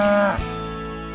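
A single loud, drawn-out cow moo, clear, with a brief dip in pitch early on before settling into a steady low bellow that holds to the end.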